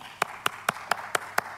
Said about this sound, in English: We clap our hands and we begin to shout because we know He always causes us to triumph.